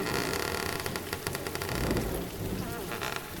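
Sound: heavy rain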